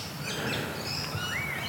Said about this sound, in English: The birds sound really lovely. I can hear a currawong and I can hear a rainbow lorikeet.